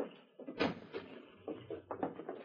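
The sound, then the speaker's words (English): A boat's cabin door, below the wheelhouse, creaks open, with a few wooden clunks and rattles spread over a couple of seconds; no one speaks. “The cabin door suddenly opened, and Rocky came up the gangway into the dimly lighted wheelhouse.”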